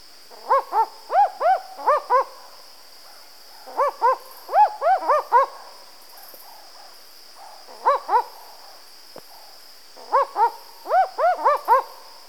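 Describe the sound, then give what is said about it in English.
Barking owls (Ninox connivens) in New Guinea call in repeated bursts of four or five quick, dog-like woofing notes, loud, with short pauses between groups and a steady high insect drone behind them. “The next recording is also of barking owls, but this time in New Guinea.”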